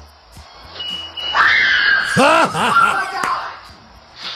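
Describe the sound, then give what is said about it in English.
A distant high-pitched, shrieking scream, heard from the back of a house and caught on camera, holds a steady, piercing pitch for about two seconds, with a voice exclaiming loudly over its middle stretch before it fades away. “And in the distance, we hear this shrieking sound. Which, by the way, we actually caught on camera.”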